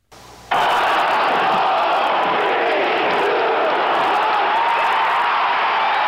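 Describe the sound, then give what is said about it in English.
A crowd packing the Olympic Center in Lake Placid, New York, bursts into sustained, roaring cheers after a brief quieter lead-in, a dense wall of shouting and whooping that stays loud and steady throughout, as the United States beats the Soviet Union 4–3 in Olympic hockey. “With that cheer, the biggest upset in Olympic hockey history was complete.”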